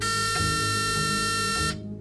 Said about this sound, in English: December 18th, 2009, the Friday before Christmas, a balmy 63 degrees as the sun climbed up the light pink wall of the courthouse. A buzzer burst the silence.